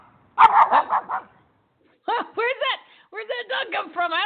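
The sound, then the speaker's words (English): A dog barks in quick, yappy bursts, three clusters of rapid high-pitched barks separated by short pauses, loud. “a dog?”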